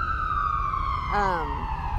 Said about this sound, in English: In L.A. 7 go down that way and 6 come back this way. Yeah, all day. Oh, lots of ambulance, yeah.